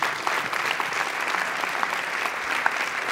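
An audience breaks into steady applause, a dense wash of many hands clapping at an even, sustained level throughout, with no voices standing out.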